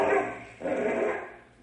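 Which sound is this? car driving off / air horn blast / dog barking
dog barking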